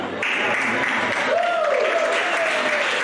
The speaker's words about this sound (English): Statistically, too many of you are applauding, but it takes more effort to order a pizza than it does to have a child.